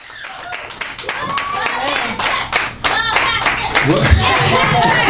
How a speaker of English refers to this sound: Got me a little cheering section, baby.